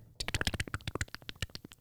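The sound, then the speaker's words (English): Rapid typing on a keyboard that is not plugged in, a quick run of about twenty crisp clicks in an uneven rhythm, fairly loud and alone with no voices. “That keyboard isn't even plugged in.”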